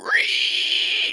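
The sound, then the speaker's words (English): A voice imitates a pig's squeal: one loud, shrill, sustained squeal that rises sharply at the start, holds steady for about a second, then cuts off abruptly. “You squeal, piggy.”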